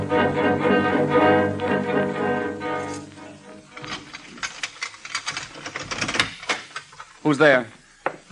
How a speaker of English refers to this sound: Get to work on the typewriter.